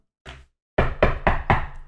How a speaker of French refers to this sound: Ça cogne à la porte. C'est qui? C'est qui? Non, mais je pensais que c'était toi, t'as cogné.